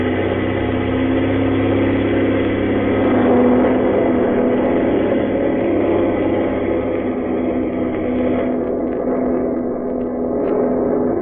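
Airplane engines drone steadily and loudly throughout a flight to Europe, a dense, unbroken mechanical hum with a low throbbing undertone and no voices or pauses.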